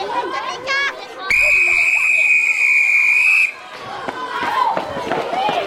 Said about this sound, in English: Right, it's time to blow the whistle.